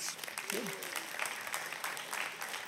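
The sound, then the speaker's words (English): Thin, half-hearted applause from a small church audience, a steady patter of scattered claps at low volume, with a brief murmur of voice underneath near the start. “And that was as weak a clap as there's ever been inside of church.”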